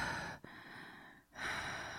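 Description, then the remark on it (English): Slow, heavy breathing: a long airy breath, a brief pause, then another drawn-out breath, soft and steady with no talking. “So we start on a black screen and we just hear heavy breathing. Slow, like heavy breathing.”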